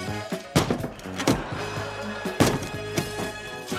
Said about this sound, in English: John Candy's knocking down the door with an axe.